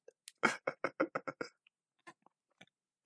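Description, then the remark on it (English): Someone swallowing, with a quick rhythmic run of about seven wet gulping mouth sounds, followed by a few faint scattered clicks. No one talks. “Sorry, swallowing.”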